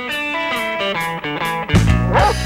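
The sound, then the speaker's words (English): A dog barks in a quick run of short, pitched yelps, ending with a louder, rougher bark. The barking is fairly loud, with no talking. “Lost your dog? Found someone else's dog?”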